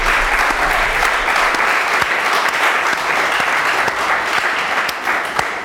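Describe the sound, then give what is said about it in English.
A steady burst of applause from a group, many hands clapping densely and loudly for several seconds with no voices standing out. “Can we applaud for that?”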